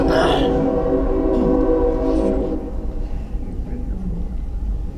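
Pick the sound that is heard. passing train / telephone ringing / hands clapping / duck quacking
passing train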